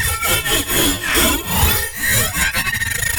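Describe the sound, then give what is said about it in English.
A heavily processed guitar string sample: harsh, gritty scraping strokes in a steady back-and-forth rhythm, like sawing, breaking into a rapid stutter at the end. No voices. “Guitar string, all the same stuff.”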